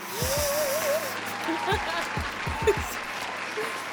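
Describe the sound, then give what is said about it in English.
A short applause sound effect: a burst of hand claps with sharp, uneven hits, mixed with voices cheering and a rising-falling whoop over the top. “Cue the claps.”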